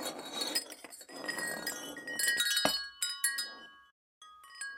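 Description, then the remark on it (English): Bright metallic clinks and tinkles of a wind chime being made ring out in irregular clusters, with sustained high tones lingering between strikes and a brief pause before a few final chimes. “I'm making a wind chime.”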